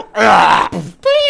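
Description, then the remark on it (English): A person vocally imitates a cat throwing up: a loud, strained retching groan, a brief gagging break, then a higher, tonal heave, all in about a second and a half. “And there you go, the cat throw up sound.”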